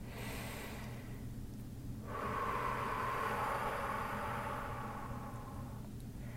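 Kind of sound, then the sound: human body sound, deep slow breathing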